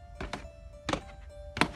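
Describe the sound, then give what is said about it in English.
Heavy, dull thuds of someone banging on a front door: a quick double knock, then two single blows spaced apart, moderately loud with no voices. “She's drunk and stupid like this, and she's just banging on the door to be silly.”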